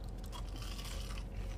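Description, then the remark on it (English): Crisp crunching as someone bites into and chews crispy curly fries, a dense, steady crackle lasting the whole moment with no talking. “Wow, crispy. Crunchy.”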